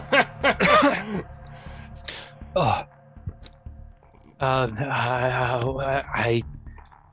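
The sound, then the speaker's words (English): A voice imitates choking and wet coughing on blood after biting down into the tongue: a few short, sputtering coughs and gasps, then a longer strained, gurgling groan, fairly loud, with no clear words. “You're going to lose 4 points of sanity and start immediately choking and coughing on your own blood.”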